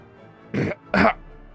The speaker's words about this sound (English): All right, she quickly wakes up, eyes open, starts coughing with the gag in her mouth. I pull the gag out.